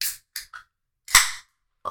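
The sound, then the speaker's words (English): A few quick metallic clicks, then a sharp crack and a short fizzing hiss as a can of New Belgium Mountain Time Premium Lager beer is opened, with a final click at the end. No one speaks. “I'm about to crack this.”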